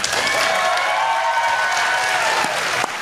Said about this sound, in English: Just listen to listen to that applause.